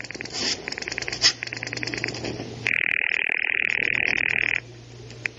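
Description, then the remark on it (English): A telephone in a den rings with a loud, buzzing electric tone that sounds steadily for about two seconds, following a stretch of fainter pulsing, chattering tones. There is no talking. “Well, right now, George has shut himself in the den to use the phone.”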